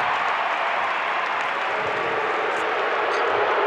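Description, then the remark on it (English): A large basketball arena crowd boos a player in a sustained, dense roar that fills the space evenly for the whole stretch, with no break and no voices standing out. “Crowd booing Hayward, who has seven assists tonight.”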